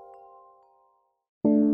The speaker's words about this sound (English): Woodstock chimes, the world's favorite wind chime.